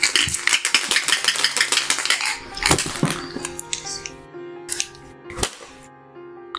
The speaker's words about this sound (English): And let me just roll percentile dice here just to... Before I roll? What's happening? No, you guys can roll.